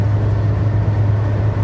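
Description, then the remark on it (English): A tour bus rumbles steadily, its low engine drone and broad road noise holding at a constant level throughout, with no voices. “That's a tour bus.”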